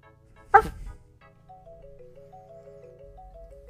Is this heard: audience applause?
no